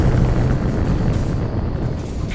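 A heavy, continuous rumbling roar from an explosion on the upper decks, dense with low-end energy and holding steady for a couple of seconds without a sharp single blast. No one speaks.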